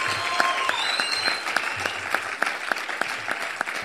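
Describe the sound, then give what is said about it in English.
A church audience claps in welcome for Pastor Lawrence, who has come from Victoria County: a steady wash of applause with sharper individual claps landing in a regular rhythm, plus a few faint whistles or cheers rising above. “Let's give him a good warm welcome as Pastor Lawrence comes all the way from Victoria County.”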